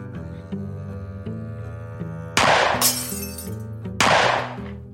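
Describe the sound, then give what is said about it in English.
The glass of French doors shatters loudly, struck by a shot pellet, in two bright, crashing bursts about a second and a half apart, each trailing off in tinkling debris, over a steady droning musical tone. “One pellet misses Jose and ends up shattering the glass of the French doors behind him.”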